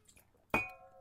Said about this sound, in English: I'm gonna just take a sip of water here and I'll read it for you.